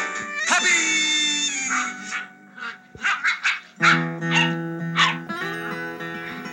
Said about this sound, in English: The scene fades up to a family of old English sheepdog puppies playing and barking in a wood-paneled suburban den somewhere, with mellow guitar music in the background.